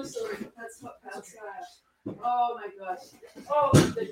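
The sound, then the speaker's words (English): A single sharp door bang rings out near the end, loud, cutting across ongoing conversation between people talking. “Oh, the door's in it.”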